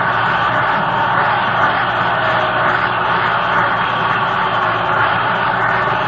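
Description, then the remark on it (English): A baseball stadium crowd roars after the Pirates' 6-5 win over the Cardinals, a dense, unbroken wall of cheering that holds loud and steady throughout, with no distinct voices rising above it. “The Pirates put it. A big victory for the Pirates. Listen to this crowd.”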